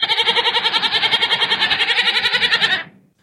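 A goat lets out one long, loud bleat, wavering in a fast, shaky vibrato for nearly three seconds before cutting off abruptly. No one speaks.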